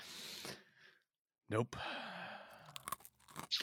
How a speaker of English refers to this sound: They sit slowly crunching back and forth, staring into the distance.